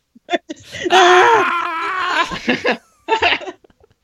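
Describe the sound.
A voice imitates a Wookiee roar: a loud, sustained, warbling growl lasting about two seconds, framed by short vocal bursts, with a brief yelping sound right after.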